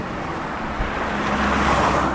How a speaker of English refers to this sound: I can always imagine that in the time we were here that you wouldn't hear this mountain of traffic. You just hear the clip-clop of hooves as the little carts went past.